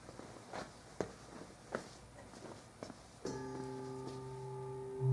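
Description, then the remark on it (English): A few soft handling knocks, then a handbell rings out with a steady, bright tone and layered overtones, swelling with a low thud at the end as it is damped against foam. “The vibration gets picked up by the foam and it blooms a little before it disappears.”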